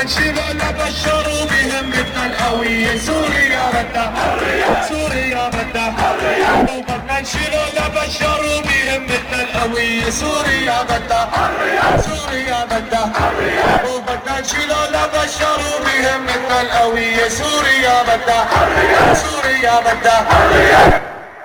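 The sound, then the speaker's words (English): A large Syrian protest crowd chants slogans in call-and-response, a leading voice calling 'Syria wants' answered by many voices shouting 'freedom' together in a steady, rhythmic back-and-forth, loud throughout. “"Khuraya," "freedom," the crowd answered fervently.”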